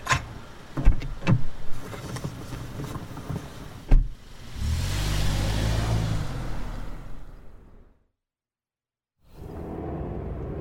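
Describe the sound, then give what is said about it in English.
Car sounds in evening city traffic: a few sharp knocks and a thump, then a steady whirring motor hum with low engine rumble, a brief silence, and the vehicle noise returning. “Come on, hop in. But I can't guarantee you getting anywhere fast this evening, pal. Traffic's a nightmare.”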